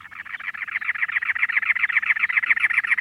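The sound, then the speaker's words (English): A cactus wren calls with a harsh, rapid chattering, a steady stream of raspy repeated notes that runs without pause, fairly loud, with no voices present. “By contrast, a cactus wren building a nest in early March orients the entrance away from the cold winds of that season, keeping the chicks snug and warm.”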